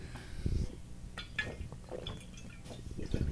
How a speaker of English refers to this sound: how was that water you drank? It was pretty good. Was it as good as the water I drank? Probably not. Mine tastes kind of metallic.